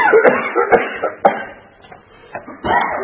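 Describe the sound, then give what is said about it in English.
A person coughs several times in quick succession, with sharp, harsh bursts about half a second apart, followed by a few rougher, breathier coughs. The sounds are fairly loud. “I excuse myself against the coughing, but believe me, I'm not doing it on purpose.”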